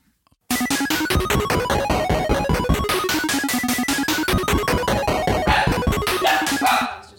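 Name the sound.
dog barking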